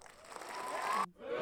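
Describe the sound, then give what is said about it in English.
A brief crowd cheering and applause sound effect, a dense, loud wash of noise that swells, cuts off abruptly near the end, then briefly returns. “I'm going to cheer him.”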